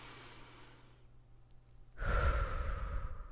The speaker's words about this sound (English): Then take a deep breath in and out. And then again, imagining it just going into your heart and then out again.